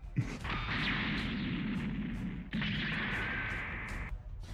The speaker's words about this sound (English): And the pyro turns to a big melted lump of metal as this fucking bullet from the Cyclone Pulse Rifle just like... hollows out the center of this thing.